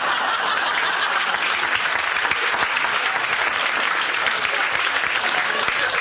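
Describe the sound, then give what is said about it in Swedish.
Steady applause from an audience fills the whole stretch, a dense wash of many hands clapping at once, fairly loud and even with no voices standing out. “Men det är inget att applådera över.”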